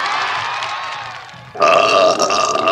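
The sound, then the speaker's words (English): A long, loud, rumbling burp from a film's belching contest scene drags on for a couple of seconds, growing suddenly harsher and more forceful near the end, with no talking around it. “I'm going to keep it classy and professional by just playing the burp clip without such a ruse”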